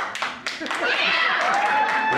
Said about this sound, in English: So, round of applause.